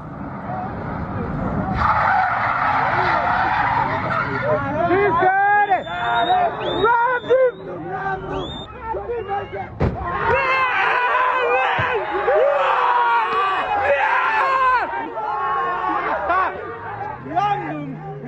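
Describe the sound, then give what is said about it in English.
Tires screech and skid repeatedly over a roaring engine, with a sharp bang partway through, as a Garda police car is violently rammed in Cherry Orchard, Dublin, on a Monday evening, while a crowd of onlookers shouts and cheers throughout. “On Monday evening, a Garda car violently rammed in Cherry Orchard while onlookers cheered.”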